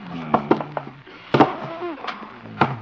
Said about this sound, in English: Better barricade the door. First the desk.